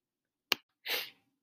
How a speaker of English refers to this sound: Oh, excuse me. I just had a sneeze there.